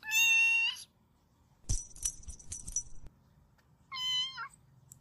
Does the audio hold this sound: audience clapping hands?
no